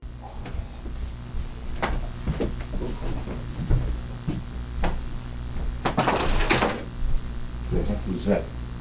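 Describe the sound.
In a room, a large metal spoon falls and lands underneath a beach chair with one sharp, loud bang and a brief clatter, against a steady room hum with faint murmuring voices.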